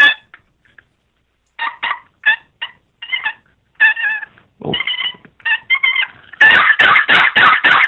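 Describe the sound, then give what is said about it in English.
A turkey call, demonstrated over a phone line, gives a scattered run of sharp clucks and raspy yelps, then ends in a loud, rolling purr of rapid, fluttering notes. No one speaks. “And you give it a little purr.”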